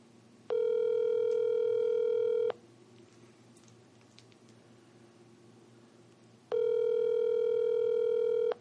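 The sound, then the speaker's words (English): An outgoing call's ringback tone purrs twice, each steady electronic ring lasting about two seconds with a long silent gap between, clear and fairly loud over faint line hiss. “Yeah, but you gotta hear the ringing.”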